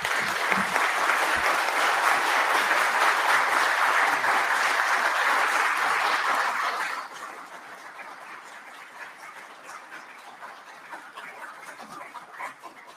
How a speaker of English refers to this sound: Y'all quit clapping. You're cutting in on my time.